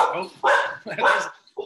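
A pet dog barks two or three times in quick succession, moderately loud, each bark a short tonal burst with brief pauses between them.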